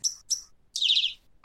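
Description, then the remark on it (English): Crickets chirping: two short, high-pitched chirps followed by a longer, buzzier high trill, fairly loud and with no one talking. “Play us in, crickets.”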